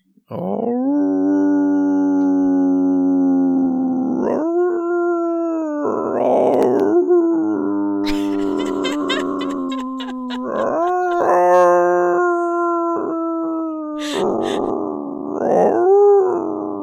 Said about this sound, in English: Howls from outside break into your conversation.